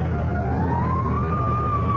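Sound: fire engine siren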